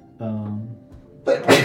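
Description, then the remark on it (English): A single loud sneeze: a drawn-out voiced intake of breath, a brief pause, then a sharp, noisy burst that ends abruptly. “Bless you.”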